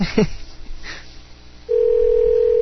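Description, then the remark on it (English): A steady telephone ringing tone of a live call placed on the show Star Wars on Direct sounds partway through and holds to the end, loud and clear over a line. Faint muffled sounds come before it starts. “And this is the third bleep. Third bleep.”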